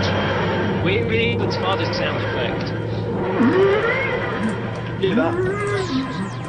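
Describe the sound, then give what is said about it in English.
A voice imitates a sci-fi time machine dematerialising, with rising and falling warbling, wheezing glides in several repeated swells, fairly loud over a steady low hum. “Hear that? I sound more like a camp whale than a TARDIS.”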